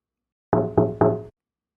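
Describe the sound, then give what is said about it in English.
A bird's beak taps three times on a bedroom window from a tree after midnight, in an even, quick rhythm. Each tap is loud and hollow, with a short ringing tail, and no voices are heard. “He tapped on the window with his beak.”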